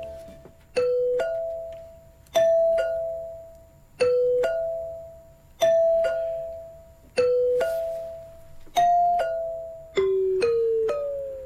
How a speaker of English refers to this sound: Okay, so Matt's going to press his doorbell, but which song from the playlist is this?